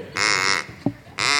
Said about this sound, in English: Because there's a little duck right there. You see him?